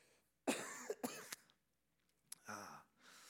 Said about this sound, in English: Let me cough.